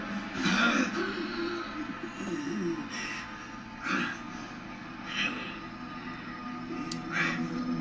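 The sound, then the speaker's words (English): A bleeding man makes guttural choking sounds as he chokes on his blood, in irregular, strained bursts, wet gasps and gurgles repeating every second or two at a moderate level, with no clear words. “Oh my god, the guttural sounds he's making because he's choking on his blood is horrible.”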